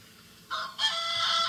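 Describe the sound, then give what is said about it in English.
A rooster crows once at about 4:45 in the morning, loud, with a strained, raspy call rising abruptly and holding a harsh, sustained note before cutting off, with no one speaking. “Yeah, I think my rooster is a little more.”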